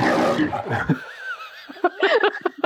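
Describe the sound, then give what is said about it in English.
A person growls out a loud, rough imitation of a lion's roar lasting about a second, followed by a faint high whine and some brief laughter. “Maybe the it thinks it be like is just the MGM lion.”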